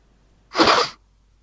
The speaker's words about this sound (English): Each one of us does a little sniff. And then, if you're listening at home, tell us who you think sniff number one is. Okay, and then we've got sniff number two.